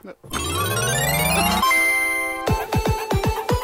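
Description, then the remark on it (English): A bell rings out with a bright, sustained metallic tone after a rising swell, then a quick series of about six falling chimes in a steady rhythm, loud. “Oh, no, he's hit the bell.”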